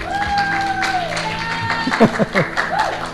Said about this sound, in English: Everybody give me a hand clap. That's good help.